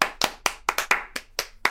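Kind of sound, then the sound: crowd, people clapping hands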